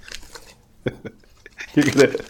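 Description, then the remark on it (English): Crisp crunching of a snack from a loud bag being chewed, several irregular bursts over a couple of seconds, with a muffled voice mixed in near the end. “Not only is the bag super horribly loud, but also you're crunching it in your mouth.”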